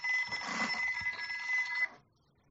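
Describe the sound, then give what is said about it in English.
A telephone bell rings continuously for just under two seconds, a bright metallic trill with sustained high tones, then stops abruptly leaving quiet. No one speaks during the ring. “Who the hell is that? Oh, man, someone's calling.”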